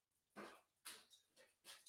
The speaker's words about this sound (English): the last time I heard a shit ton of dog barking in front of my house